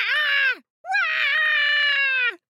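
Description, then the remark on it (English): A voice imitates a baby wailing: two loud, sustained cries, a short one followed after a brief gap by a longer, drawn-out wail. “And the baby was yelling as loudly as possible.”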